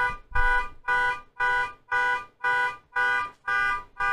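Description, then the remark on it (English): A car alarm, activated right outside a window, blares in steady, evenly spaced pulses, about two per second, each a harsh buzzing tone. It sounds fairly close and loud, with no talking over it. “Because I said that, in fact, that someone went ahead and activated a car alarm right outside my window, and that is really, really distracting.”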